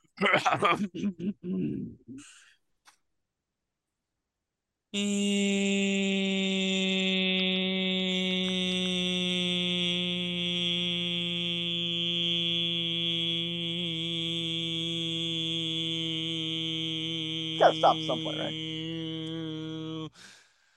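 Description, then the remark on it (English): A brief bit of talk, a pause, then a voice imitates an airplane with a long, steady droning hum at one constant pitch, held for about fifteen seconds with a few sputters near the end. “How about an airplane noise?”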